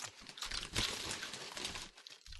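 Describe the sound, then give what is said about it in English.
A chip bag crinkles and rustles continuously for a couple of seconds, with dense, crackly bursts of noise that swell briefly partway through, with no talking. “Would you like some chips? These are pretty good chips.”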